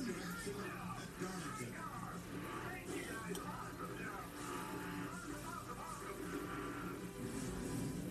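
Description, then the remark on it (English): A field of race car engines rumbles and revs together in a continuous loud roar as the cars begin to roll off at the start of a race, Ryan Preece starting on pole, with indistinct voices mixed underneath. “As the cars begin to roll off now, Ryan Preece, he's starting on pole.”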